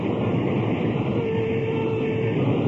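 A steady, loud rumble of a very late train at a railroad station fills the whole stretch, with a faint sustained hum rising partway through. No one speaks.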